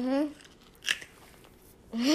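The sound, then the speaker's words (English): A sharp, crunchy bite of a hard carrot stands out, followed by softer chewing sounds in a quiet gap, with a person talking just before and after. “I feel like you're purposely chewing loud.”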